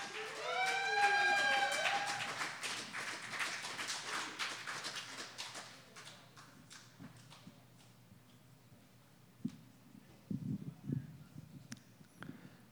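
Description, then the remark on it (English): A crowd at a poetry event applauds loudly for the next poet, dense clapping with a few high whoops and whistles at the start, then the clapping thins and fades after about six seconds, leaving scattered soft thumps. “All right, next poet up, please give a huge round of applause.”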